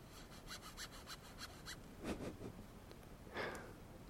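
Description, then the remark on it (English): Quick, rhythmic scratching strokes rasp across taut tent fabric, a run of about eight short scrapes followed by a few heavier, louder rubs, with no voices. “Alright, I'll give you some scratching on my tent sounds.”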